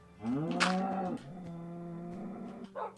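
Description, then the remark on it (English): A cow moos loudly, one long drawn-out call with a rising then steady low tone, ending with a short breathy snort. “The cows don't like the music, but I do.”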